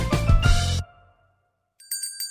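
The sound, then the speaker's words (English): A loud, full crash dies away into a brief silence, then an emergency bell starts ringing: a bright, rapid metallic trill, with no voices. “Bell not part of your act? That's the emergency bell.”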